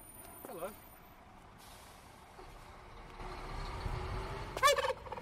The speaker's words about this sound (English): Oh, and that's Bonza, the pet turkey who greets people out front.